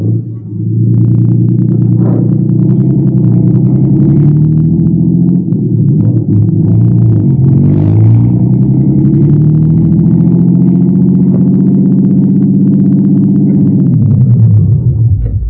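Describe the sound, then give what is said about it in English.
A car engine drives along steadily on the way to a rooming house on Garfield, a loud, low rumbling drone whose pitch rises and falls with the revs for about fourteen seconds before cutting off. No one speaks. “Okay, my car's downstairs. You're going to direct us to that rooming house on Garfield.”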